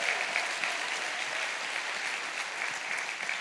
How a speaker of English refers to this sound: Our sound guys have done an amazing job. Would you guys give them a round of applause?